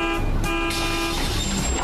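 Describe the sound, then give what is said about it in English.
A bus rumbles while a horn gives a steady, held toot over the engine noise, the tone lingering throughout the short moment. “But if you'll wait right here, in just about 2 minutes, the bus to point C will be coming right by.”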